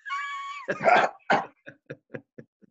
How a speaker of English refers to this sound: If I don't want them there, I start hacking.